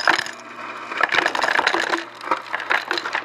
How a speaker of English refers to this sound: I poured myself another glass, and I added refrigerator ice cubes.